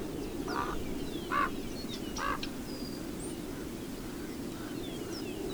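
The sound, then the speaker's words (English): A Chihuahuan raven gives three harsh, croaking calls in quick succession over a steady low rush of wind in the Sonoran Chihuahuan Desert, New Mexico; the wind continues after the calls stop. Recorded by Ruth Happel for the WildSanctuary.com CD. “We leave you this week in the desert, the Sonoran Chihuahuan Desert in New Mexico, with the sounds of the wind and the Chihuahuan raven.”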